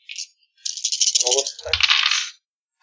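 A brief click, then six dice clatter and rattle continuously for nearly two seconds, bright and busy, with one dull knock partway through before the rattling stops abruptly. No one speaks.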